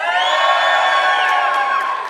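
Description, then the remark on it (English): A loud crowd of Star Wars fans at a live venue event in North Platte screams and cheers together on a count of three, a sustained roar of many high-pitched voices, steady for about two seconds before trailing off slightly at the end. “I just need to know, in this room and out in North Platte and down in the venue, if you're a Star Wars buff kind of a person, then I just need to hear you scream.”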